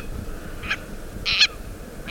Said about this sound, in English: Or perhaps the seeds hitched a ride on the ancestors of this Akeapola owl we're hearing, caught in a storm and blown to the Hawaiian Islands.